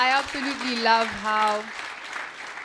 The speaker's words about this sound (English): Wow. I think this deserves a whole round of applause.